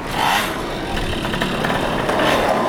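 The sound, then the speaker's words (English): A steady, gritty rumble of dozens of skateboard wheels rolling over a street, fairly loud, forming a continuous rasping roar with no pauses and no voices. “Oh yeah, it's like a skateboard wave.”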